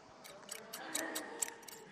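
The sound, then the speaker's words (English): A pair of handheld scissors snips repeatedly in a quick, steady rhythm, about eight crisp metallic clicks in two seconds, fairly faint against a quiet background. “I got a pair of scissors in my hand.”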